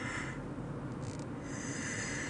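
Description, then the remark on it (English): A big, drawn-out yawn, loud and breathy with a rough, noisy texture, stretching for about two seconds with no talking. “Whew, you ever have a yawn that, like, almost gives you a boner?”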